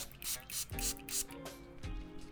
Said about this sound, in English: I put it in a spray bottle, and it just moistens my skin before I apply more products to it, because a lot of products go on easier onto wetter skin. So I'm gonna do that.